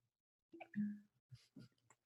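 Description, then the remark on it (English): A cork squeaks as it is twisted free of a bottle as drinks are poured, then a few soft pops and clunks follow, with no one talking. “I like it when it's got a cork. Yeah, I like that sound.”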